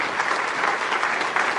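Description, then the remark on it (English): A crowd claps steadily and loudly for the whole stretch, a dense wash of many hands with no pauses and no voices breaking through. “Y'all need to clap there.”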